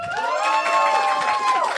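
An audience votes by clapping on whether becoming a goo or dying in Evangelion is worse: a crowd cheers loudly for under two seconds, with sustained high whooping voices over a dense wash of clapping and shouting that swells briefly and then cuts off.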